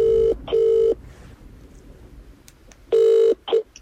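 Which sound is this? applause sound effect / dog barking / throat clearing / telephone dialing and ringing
telephone dialing and ringing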